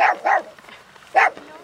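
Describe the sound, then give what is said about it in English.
A small terrier, Sparks, at a house on the Wyoming prairie barks three times in quick, sharp yaps, two close together and a third after a short pause, fairly loud with nothing else around. “This is my tiny terrier, Sparks.”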